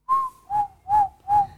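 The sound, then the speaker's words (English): Someone whistles four short, steady notes in a quick, even rhythm, fairly loud, with the first note slightly higher and longer than the rest, and no one talking. “What are you whistling for?”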